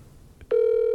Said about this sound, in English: You making a phone call? Let's see. Oh, shit. We're getting corporate on the phone. See if corporate picks up.